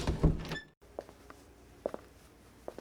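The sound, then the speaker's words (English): A door opens with a loud, brief rattle and clunk, followed by a short silence and a few faint, spaced footsteps or taps. “Then we heard a knock at the door.”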